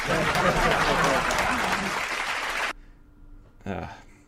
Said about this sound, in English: Hey, we have piped in crowd noise too. We have piped in crowd noise too.